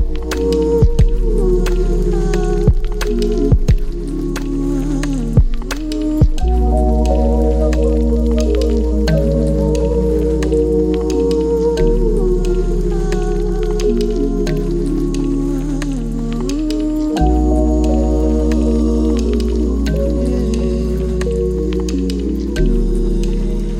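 Loud, steady instrumental electronic music with a deep, heavy bassline and layered synth chords that shift every few seconds, with no singing or talking throughout.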